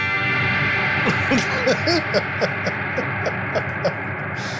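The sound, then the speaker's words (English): A guitar played through a reverb pedal with presets and knobs for mix, gravity, feedback and size: a steady electrical hum, then a run of plucked notes about once or twice a second, each washing into a long, shimmering tail. “It's got some presets. It's got a couple of knobs. It's a friggin' reverb.”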